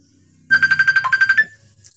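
A mobile phone ringtone plays a loud, rapid burst of about ten high-pitched electronic pulses for roughly a second, then cuts off abruptly, with no one speaking.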